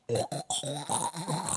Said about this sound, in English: But you're going to... Excuse me. My bad. Swallow it anyway and burp it out later. Yeah, I did.